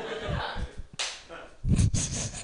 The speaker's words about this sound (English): One clap is what that deserves.